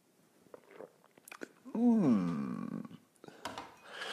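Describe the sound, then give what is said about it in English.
Sipping coffee from a mug: a few soft slurps and mouth clicks, then a drawn-out, satisfied vocal "ahh" that slides downward, followed by more quiet sips and small clinks. “It's called the simultaneous sip, and it happens now.”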